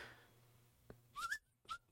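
A person whistles a short snippet of a tune: a quick wavering phrase followed by a single brief note, fairly quiet, with no talking.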